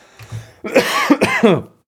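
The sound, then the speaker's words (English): A brief bout of harsh throat clearing and coughing during a Twitch stream: three rough, voiced bursts in quick succession after a low rumble, with no speech. “I had to hit the cough button.”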